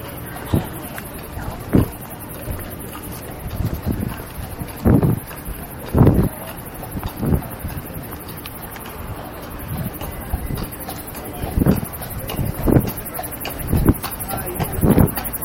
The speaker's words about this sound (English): Oh, those people taking horse rides. A horse and buggy type thing. A white horse and a white carriage. Wow.